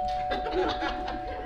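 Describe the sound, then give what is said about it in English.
A doorbell chimes with a steady, ringing tone that holds for over a second, set against a busy background of faint voices and laughter-like chatter. “Be Bee had just finished putting the finishing touches on her table settings when the doorbell rang. Sounded a lot like this.”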